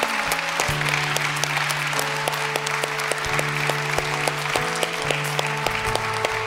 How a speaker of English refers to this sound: So if that was you this morning, I just invite you to come, and we're just going to applaud you for you making that decision this morning.